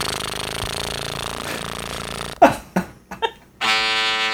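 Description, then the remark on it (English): A voice imitates a tuba with a low, rough lip buzz held steadily for about two seconds, followed by a few short sputtering bursts and then another sustained, brighter buzzy tone. “We're going to see who has the best tuba buzz.”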